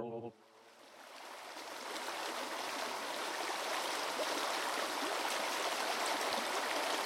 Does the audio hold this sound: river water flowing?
yes